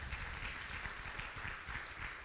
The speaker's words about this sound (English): gets extra credit today because he clapped first.